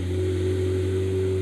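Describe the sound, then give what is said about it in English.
A wide-body McLaren sports car engine fires up and runs with a loud, steady low drone, holding an even pitch without pauses throughout the short stretch, no voices heard. “And now we have a loud car starting while we're doing a podcast.”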